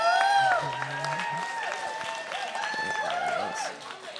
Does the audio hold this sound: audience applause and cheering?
yes